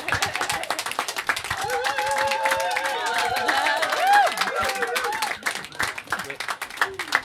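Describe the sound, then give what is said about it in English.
A studio audience in Studio Z at radio station 98.9 WCLZ claps and cheers steadily to welcome a band, a dense wash of hand claps with rising whoops and shouted voices over it, sustained for several seconds with a few sharper claps toward the end. “And I told you when people started cheering.”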